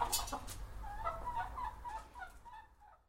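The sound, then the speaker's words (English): Several hens, including one named Gertie, cluck and squawk in a busy, overlapping squabble, with sharp bursts and wavering calls over a low rumbling background, trailing off toward the end. “Gertie was the hen-pecked one, and now she's all about it.”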